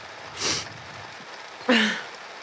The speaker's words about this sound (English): Raining really hard.